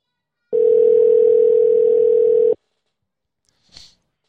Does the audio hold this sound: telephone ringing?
yes